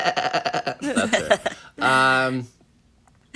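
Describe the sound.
A baby lets out a single drawn-out, bleating cry that sounds like a billy goat, loud, following a moment of babbling voices.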